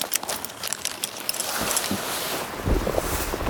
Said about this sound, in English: Oh! Oh, it's so windy! My feet are wet!